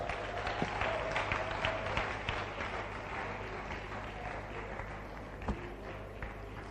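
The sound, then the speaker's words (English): An audience at the close of a church service claps for the Lord in a dense, steady burst of applause that holds evenly for several seconds, with a few sharper individual claps standing out and a low hum underneath. “Give the Lord a clap.”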